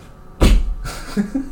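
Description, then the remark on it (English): A short, sharp knock lands loud, then quickly fades into faint background noise with a softer trailing thump. “Now knock really short.”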